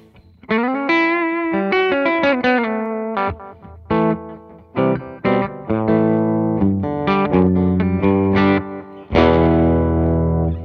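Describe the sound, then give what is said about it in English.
Clean electric guitar with humbucker pickups, played with no distortion, plays a lively run of single notes and short chords, ending on a ringing strummed chord. Fairly loud, with no voices. “That's with no distortion.”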